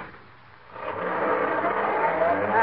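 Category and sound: vehicle, car driving off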